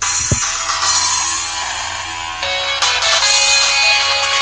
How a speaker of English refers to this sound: My cell phone, main ringer, and I say main because I have a lot. It is obviously